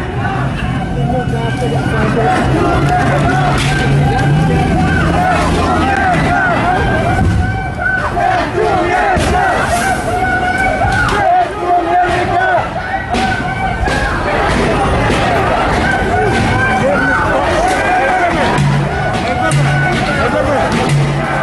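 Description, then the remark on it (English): A large crowd on a street in America chants "Death to America" in unison, many voices loud and rhythmic, repeating in steady bursts over a constant roar of shouting. “This is an organized chant amongst a violent, aggressive mob of terrorists walking through the street threatening death to America.”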